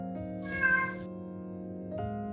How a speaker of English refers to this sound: Yeah, and they meow at me. There's a cat somewhere. Tavern cat, I'm sure. It's upset because the tavern is gone.